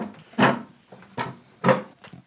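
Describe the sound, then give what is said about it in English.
Three short, fairly loud wooden scrapes and knocks of chairs being shifted at an extremely large, long wooden table come in quick succession with brief quiet gaps between them and no talking. “Please excuse our chair noises at our extremely large, long...”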